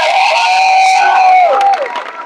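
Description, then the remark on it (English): An audience cheers loudly in a long, high, sustained shout that slides downward, then scattered sharp hand claps break out as they clap their hands for God and the cheering fades. “You see, as you are clapping, God is creating things in your life.”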